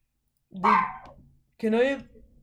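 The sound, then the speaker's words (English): A guard dog barks twice, loud, with two drawn-out, harsh barks separated by a short pause and no other sounds around them. “Salute the guard dogs.”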